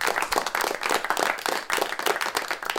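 An audience claps together in a steady burst of applause lasting a few seconds, dense and even throughout, moderately loud with no voices standing out.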